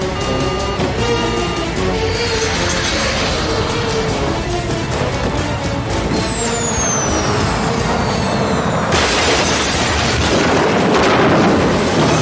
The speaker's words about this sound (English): as the plane is about to crash into that hangar, and then like where you expect the like ultimate resolving downbeat is the actual sound of the plane crashing. Like, it's just really well timed and spotted and stuff.